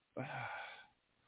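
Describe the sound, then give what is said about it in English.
A single yawn, a drawn-out breathy exhale with a brief low voiced groan at its start, fading after under a second into quiet. “I'm yawning too much.”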